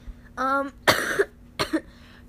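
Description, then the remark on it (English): A short voiced grunt followed by two harsh, raspy coughs in quick succession, fairly loud, with no talking around them. “I'm not sick, I just have a cough.”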